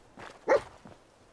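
A dog barks at a brick wall: one sharp bark, with a couple of softer, muffled barks just before and after. No voices are heard.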